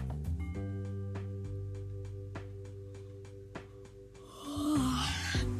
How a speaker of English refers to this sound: Jeez Louise, what is up with the yawns, am I right?